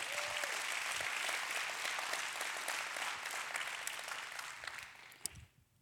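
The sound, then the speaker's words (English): An audience breaks into steady applause, many hands clapping in a dense, even patter that holds for several seconds before fading out with a final few claps. “Somebody ought to clap right there.”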